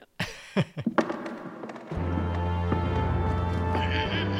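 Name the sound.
voice imitating a horse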